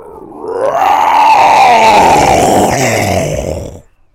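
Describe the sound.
As a sign-off, a person growls out a long, loud imitation of a tiger's roar, a rough, strained voiced sound that rises, holds for about three seconds, then slowly sinks and trails off.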